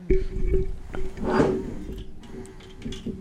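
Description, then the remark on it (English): A short splash of liquor poured into a shot glass, with a brief gurgling swell in the middle and a few light knocks and clinks around it over a low background hum. “Pour me another shot.”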